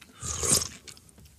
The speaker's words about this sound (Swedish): Jag får väl dricka på den